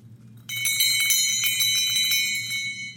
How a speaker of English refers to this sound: Do you want to hear our bell? Sure, yes. Yeah. Yes, because there's a place, of course, where this rings and can only be heard by people who still believe.